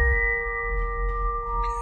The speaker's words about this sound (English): Just the wind whistling through the pipes. It should sound familiar.